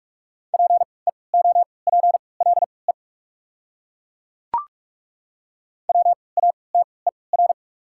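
Rapid Morse code at 45 words per minute with 3x character spacing, sending common English words: a steady mid-pitched tone beeping out quick dots and dashes in two runs, separated by a silent gap broken by a single short click.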